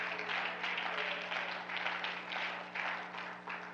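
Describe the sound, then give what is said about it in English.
A church audience gives a hand clap of praise to the Lord during a morning sermon, many hands blending into a steady roar of claps that swells and dips slightly over a few seconds, with a low hum underneath. “Give the Lord a hand clap of praise this morning if you can.”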